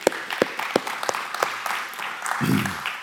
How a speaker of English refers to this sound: So let's give the Lord another round of applause this morning.